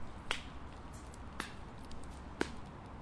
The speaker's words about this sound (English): slow clap. That's never good. From one of the castles on the ship,